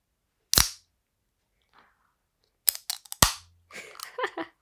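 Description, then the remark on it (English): A can of Honey Crisp Apple flavored spiked cider-style drink being opened: a sharp click, a pause, then a quick cluster of snaps and a loud pop followed by about a second of crackling, fizzing hiss. “So I'm going to do like an ASMR, like open the can.”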